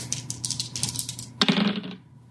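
Dice rattle briskly in a hand or cup, then clatter onto a hard table and tumble to a stop, landing on boxcars, a total of 12. Fairly loud clicking, with no voices.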